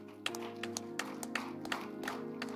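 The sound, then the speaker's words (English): Scattered hand claps from a crowd, sharp irregular smacks over a steady low hum, building into a loose patter of applause with no voices. “But you are clapping.”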